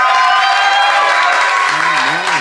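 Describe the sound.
A large audience claps loudly and steadily, a dense wash of hand claps filling the room, with a few voices cheering or calling out over it toward the end.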